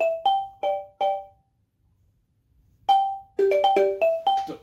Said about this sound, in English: There's a jingle. Just so you guys know, there's a jingle for show and tell. Plug your ears.